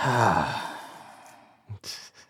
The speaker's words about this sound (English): He's yawning.